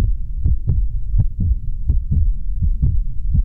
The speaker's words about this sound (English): Thinking back to that moment, I didn't feel scared or sad or anything at all. I just remember hearing the sound of my heart beating.